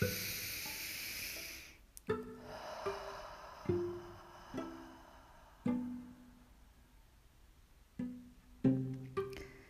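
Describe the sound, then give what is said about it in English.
A long, breathy whoosh of air fills the first two seconds as a deep Ujjayi ocean breath is drawn in through the nose and let out through the mouth, then gives way to soft, slow plucked musical notes that ring and fade one after another. “Again, in, out, one more in through the nose and then out through the mouth.”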